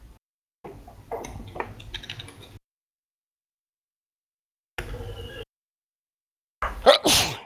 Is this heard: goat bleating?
no